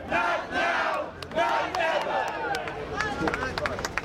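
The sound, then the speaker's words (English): A large crowd at a 2010 anti-Muslim, anti-mosque rally at Ground Zero, protesting a proposed Islamic community center and mosque in Lower Manhattan, shouts and yells together, many overlapping voices rising and falling in a continuous loud roar, with sharp bursts and claps cutting through. “It was a rally protesting a proposal to build an Islamic community center and mosque in Lower Manhattan.”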